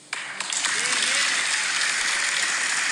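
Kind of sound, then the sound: crowd, audience applause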